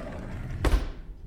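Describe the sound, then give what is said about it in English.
A single solid thud as a file drawer slams shut, fairly loud, with a brief rattle trailing off into quiet. “Take the file and shut the drawer.”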